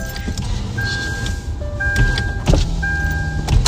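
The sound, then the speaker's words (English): A car's electric window motor whines in short steady bursts as the car window is rolled down, a thin mechanical hum stopping and starting a few times over a low rumble of the vehicle. “Put the window down. Get it down right now.”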